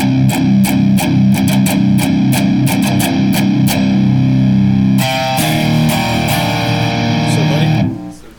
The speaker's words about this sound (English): I'm pretty positive it's a late 80s, early 90s, it is an old model of the OS2 from Boss. That's the overdrive distortion. I'm gonna check it immediately as the last setting that I had. Here's clean. Here's on.